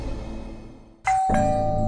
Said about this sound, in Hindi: रितु पापा के घर की घंटी लगातार बजाती जा रही है।